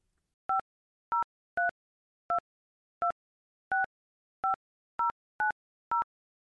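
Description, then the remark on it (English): Ten short touch-tone beeps of a phone number being dialed, each a clean electronic dual tone, spaced unevenly and heard alone in silence, calling the viewer question and comment line for The Story on KGW-TV. “So we're going to end this episode with a little phone call from me to you.”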